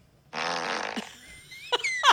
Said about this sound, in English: No, it's usually a different fart sound than Kim.